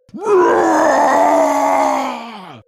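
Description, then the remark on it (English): A human voice imitates the blood-curdling scream of a zombified dwarf chained to a table: one loud, sustained, raspy howl lasting over two seconds, rising sharply at the start and sagging slightly before it cuts off, heard alone. “And it lets out this huge blood-curdling scream as you crawl onto it.”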